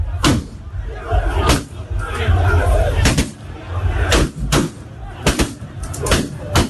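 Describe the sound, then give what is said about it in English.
A loud, agitated crowd of protesting supporters roars and shouts at an election collation centre in Techiman South while sharp gunshots from police and military crack out at irregular intervals, about seven bangs, some in quick pairs, cutting through the steady din. “This video shows protest from the crowd. Then the shooting starts.”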